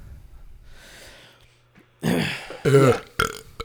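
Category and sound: human body sound, loud belch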